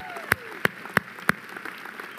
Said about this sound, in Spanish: Chihuahua, dense un aplauso.